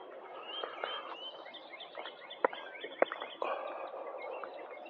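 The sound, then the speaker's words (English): A steady chorus of birds chirping and twittering outdoors, fairly soft, with two sharp clicks partway through. No one speaks. “Listen to those birds.”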